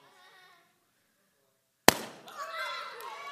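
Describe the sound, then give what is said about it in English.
A single sharp, loud pop as a flame touches an empty balloon, bursting out after quiet murmuring, followed by excited children's voices and chatter reacting. “What do you think will happen if the fire touches this balloon? You think it'll pop?”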